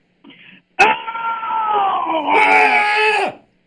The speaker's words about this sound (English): Hey. Can you give me a scream?